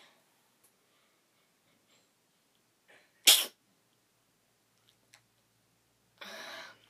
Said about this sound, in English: I had to sneeze.